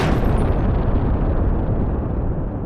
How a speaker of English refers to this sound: But suddenly, before the gang can do anything else, there is a massive, massive explosion outside, and things are about to kick off.